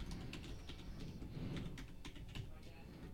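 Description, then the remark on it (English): Rapid, uneven keystrokes clatter, a steady run of sharp mechanical clicks of typing a vintage-style letter on a typewriter, with a low background murmur underneath. “Made from our typewriters.”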